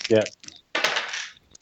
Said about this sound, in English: So your modifier is minus 3 or minus 4. Just rolling just 2 dice. And that's it.